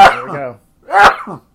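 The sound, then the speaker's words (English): Two loud sneezes about half a second apart, each a sharp burst that trails into a short, throaty, voiced tone, with nothing else heard between them. “Oh God! Bless you.”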